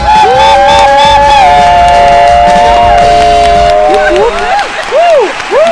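A studio audience bursts into loud, sustained applause mixed with cheering and shrill whistles, welcoming South African cricketer Sinalo Japhta, Proteas wicketkeeper, to the studio. The clapping stays dense throughout, while rising and falling whistles stand out near the end.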